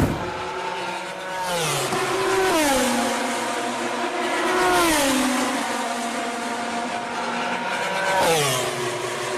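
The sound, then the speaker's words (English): A high-revving MotoGP racing motorcycle engine screams past, its pitch rising and dropping sharply with each gear change and pass. The sound is loud, with no voices. “That's MotoGP.”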